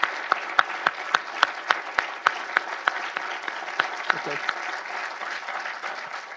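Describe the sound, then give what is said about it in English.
An audience at a public event gives a round of applause to an ambassador, a dense wash of hand claps with sharper individual claps standing out early, gradually thinning toward the end. A voice briefly speaks. “So we thank you for coming, and I'd like to ask all of you now to give a round of applause to Ambassador.”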